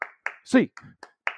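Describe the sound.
A quick, evenly spaced run of sharp hand claps, eight counted claps in under two seconds to end a show, with a voice calling out the count briefly in the middle.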